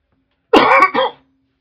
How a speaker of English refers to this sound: Sorry about the whole like cough interruption on there.